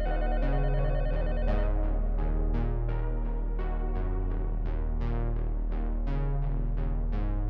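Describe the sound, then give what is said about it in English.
A hotel room telephone rings steadily with a bright, repeating bell-like tone, each strike in a quick regular rhythm over a sustained low hum. It is fairly loud, with no voices. “And at the same time, the phone in my room rang again.”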